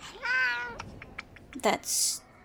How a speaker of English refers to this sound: That's Sebastian. And is he your favorite? Yes. Good kitty. Oh, he likes you.